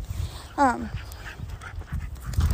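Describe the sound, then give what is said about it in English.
A dog pulling on a leash lets out one short, high whimper that slides downward, over steady wind rumble and faint shuffling outdoor noise on a windy day. “Oh, the dogs are pulling.”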